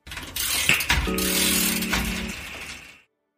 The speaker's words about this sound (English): Someone is winding a clock as time continues to flow.